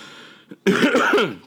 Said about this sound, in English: Excuse me. That's Corona cough where I'm from.